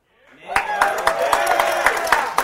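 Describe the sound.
A thin scattering of hand claps, roughly a dozen sharp irregular slaps, rises over a murmur of crowd voices and a few whooping cheers, steady and moderately loud for a couple of seconds.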